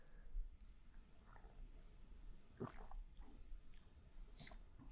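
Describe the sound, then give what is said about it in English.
A quiet sip of tea made with real tea leaves and real oranges, with a few soft wet slurping and swallowing mouth sounds against a hushed background with no talking. “Well, let's test that out. One sip.”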